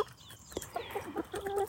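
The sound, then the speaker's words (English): A hen called BB clucks softly in a quick series of short, throaty clucks and murmurs as she is presented a handful of corn to be hand fed, alone with no talking. “This, I don't know if you can hear, is a hen called BB.”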